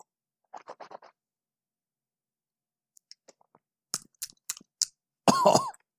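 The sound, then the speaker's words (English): After tasting a 126.7 bourbon that got into the nasal cavity: a short raspy burst, a pause with faint clicks, then a string of sharp sputtering coughs ending in one loud, harsh, throaty cough. No one speaks. “It got into the nasal cavity there.”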